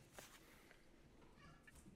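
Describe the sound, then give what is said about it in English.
A cat meows faintly, with a drawn-out, wavering cry near the end and a shorter sound earlier, over a low, steady hum. “What is that cat doing? I'm about to kill it.”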